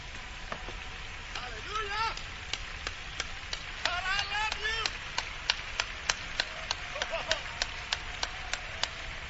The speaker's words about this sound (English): Let's give the Lord a very great hand clap. He's worthy.